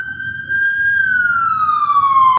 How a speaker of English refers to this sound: Police sirens going off. They're not looking for me.